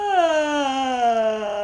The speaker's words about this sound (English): Oh, that was an appropriately timed yawn.